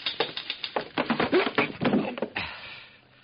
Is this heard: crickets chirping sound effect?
no